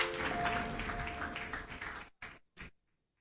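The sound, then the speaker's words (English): An audience at a sermon claps together on the preacher's call in a dense, steady burst of applause for about two seconds, then it breaks off abruptly and a couple of last scattered claps trail away into silence. “Clap your hands and you may be seated.”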